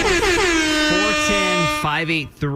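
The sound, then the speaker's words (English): A loud, blaring air horn sounds in one long, sustained blast with a wavering pitch, then breaks into a few short stuttering honks at the end. “We'll air horn that one too.”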